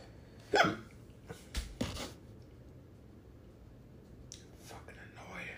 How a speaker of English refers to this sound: I really want to do this episode without hiccups.